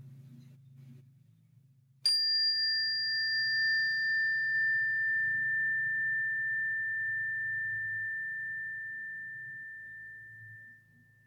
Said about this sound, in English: And I invite you to listen to this bell as we come back.